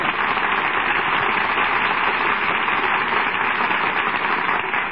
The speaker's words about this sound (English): Say, you got a lot of applause tonight.